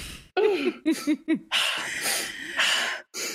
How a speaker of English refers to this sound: Don't know why she's breathing heavy. She's done very little. I mean, breathing exercises are very important as well. From your diaphragm.